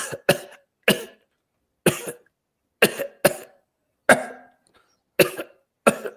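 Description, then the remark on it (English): A woman in a Walgreens store coughs a series of short, dry coughs at an irregular pace, about nine sharp bursts, each decaying quickly into silence. Fairly loud, with no talking. “This consistent dry cough, and I look, and there's a woman, no gloves, no mask, touching all the after Easter sell items and coughing on them, this dry cough.”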